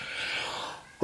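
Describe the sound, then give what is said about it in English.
A breathy, hissing intake builds for about a second, then breaks into a short, sharp sneeze burst at the very end. It is moderately quiet, with no talking. “Bless you.”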